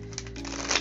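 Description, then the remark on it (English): A brief riffle of a tarot deck being shuffled: soft papery flutter and crisp flicking at steady volume, swelling slightly near the end, with no one speaking. “Just listen to the cards.”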